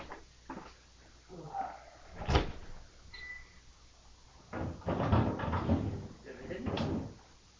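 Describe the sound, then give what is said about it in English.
A drawer on the right slides open with a sharp knock, followed by a few seconds of clattering and shuffling as items inside are rummaged through for something hidden in the back, with faint voices in the background. “In the drawer. Drawer on the right. It is hidden in the back of the drawer.”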